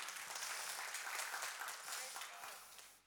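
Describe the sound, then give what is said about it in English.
An audience breaks into applause: dense, overlapping clapping from many hands, steady and fairly loud for a few seconds before tapering off at the end. “Yeah, you can clap.”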